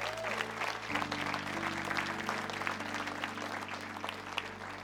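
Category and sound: crowd, audience applauding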